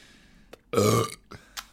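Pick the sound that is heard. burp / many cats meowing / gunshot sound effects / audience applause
burp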